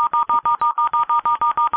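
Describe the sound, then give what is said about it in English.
A rapid run of about a dozen touch-tone telephone dialing beeps, evenly spaced and loud, as someone hits the redial button on their phone, with no voices. “Someone hit the redial button on their phone.”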